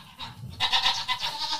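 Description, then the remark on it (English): Goats dressed in pajamas bleat loudly, a wavering, nasal cry that swells after a brief low rumble and carries on to the end, with no one talking. “Where are you going, goats?”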